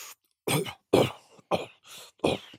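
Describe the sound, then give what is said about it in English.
A voice imitates someone's habitual little cough before every sentence in post-match interviews, giving about five short, sharp coughs in quick succession, fairly loud, with brief silences between them. “It seems now pretty much every single post-match game, he's got a little cough. Yeah. Which is there before sort of every sentence.”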